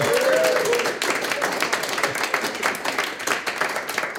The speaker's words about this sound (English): Big round of applause.